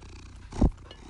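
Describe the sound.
A person briefly imitates the purr of an orange cat character named Marky, a single low rumbling burst lasting a fraction of a second, moderately loud against a quiet background.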